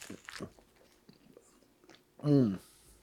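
Crunchy bites and chewing of a pizza crust, a few sharp crackles followed by softer mouth noises, ending with a brief hummed 'mmm' from the eater.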